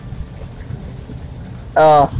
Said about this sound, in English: It's really raining hard. Miss 10%. Lying. Sack of shit. lying sack of shit my Android Google thing is. It lies. Good grief. This is more than 10%. This is like 100% chance of rain.